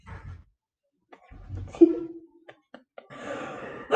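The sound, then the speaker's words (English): A few deep, deliberate breaths, with airy inhales and exhales, a brief hummed tone in the middle, and a longer, louder breathy exhale at the end. “Breathing.”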